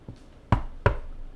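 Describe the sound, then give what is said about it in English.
Two firm, fairly loud knocks on a door, made as a Foley sound effect, spaced about a third of a second apart, with a faint softer tap just before them and no one speaking. “Thanks for the knock.”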